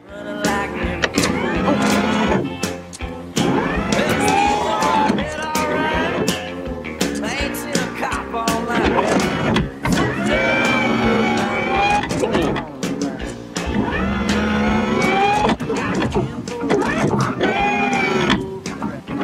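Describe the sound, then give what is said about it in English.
Loud mechanical whirring from a power car seat in a rental car as people adjust it, heard from the passenger seat, running in repeated bursts with brief pauses between, while voices murmur underneath. “And the absurdly loud mechanical sounds we hear from the passenger seat of their rental car as we watch each of them make adjustments.”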